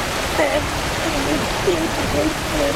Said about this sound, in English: This car is called Fire Hydrant Head because there is a fire hydrant on top of the car that is exploding with water every single second.